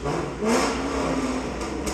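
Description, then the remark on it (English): A car with a loud, throaty aftermarket exhaust revs hard at a car wash while being washed, its pitch climbing and holding for about a second before easing off under a constant roar of road noise. “He must have just got that exhaust put on, man.”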